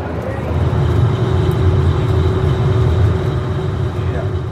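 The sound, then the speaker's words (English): A ferry engine drones loudly and without pause, recorded aboard the ferry right next to the engine: a deep rumbling roar with a steady mechanical hum and a thin high whine riding on top throughout. “in real life here, like we're right next to the engine, and it's quite intense”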